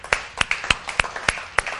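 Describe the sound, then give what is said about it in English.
An audience claps for Jesus at a church service in quick, slightly uneven bursts. Sharp bright smacks land roughly three times a second, with softer claps scattered between them. No one speaks. “Clap for Jesus.”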